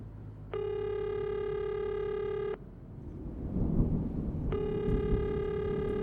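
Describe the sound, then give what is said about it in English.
A telephone ringback tone sounds twice over a phone line as a caller waits for an answer, each steady electronic ring lasting about two seconds with a pause between, set against a low rumbling background noise. “Come on, answer. God damn it, pick up the phone.”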